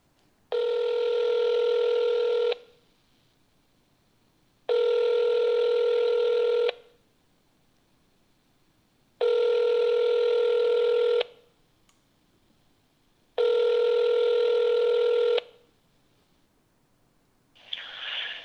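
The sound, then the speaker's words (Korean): A phone ringback tone from a call to a younger friend who lives in New York repeats four times, each two-second ring separated by a pause of similar length, steady and fairly loud, with no one picking up and no voices. “제가 한번 전화를 해볼게요.”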